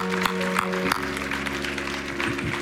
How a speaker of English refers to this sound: Praise God. Let's give the Lord a clap offering, would you?